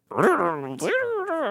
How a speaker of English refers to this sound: Yeah, that was my dog, Chet Spaghetti.